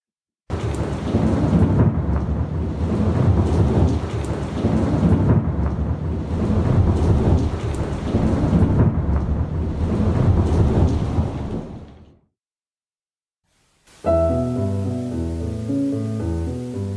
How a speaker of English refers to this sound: the album closes with …, which opens with the sounds of rain and thunder, as you just heard